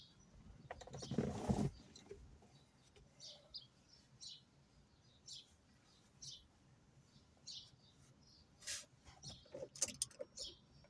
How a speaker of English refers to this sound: Loud ass birds.